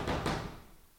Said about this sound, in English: He's knocking. Man, we in bed.